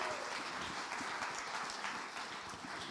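An audience applauds, many hands clapping in a dense, steady wash of sound that stays loud and even for the whole three seconds, with no voices standing out.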